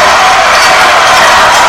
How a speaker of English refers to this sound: LeBron gets the crowd to its feet.